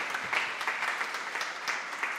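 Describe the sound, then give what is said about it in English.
Steady applause fills the whole moment, a dense patter of many hands clapping together at an even, moderate volume with no voices over it. “Yes, we should clap.”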